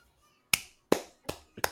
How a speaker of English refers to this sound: Clap. Clap.